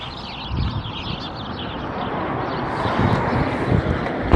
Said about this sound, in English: There's a lot of birds over here. Look, can you hear them?